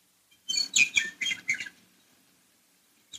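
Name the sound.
birds singing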